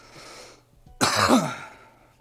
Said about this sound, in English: Coughing before you take the dab's a good sign. It's gonna be a good dab.